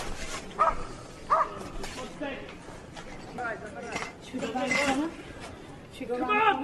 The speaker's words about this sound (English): You hear them screaming for medics. You hear the dogs barking. This is obviously not a military installation.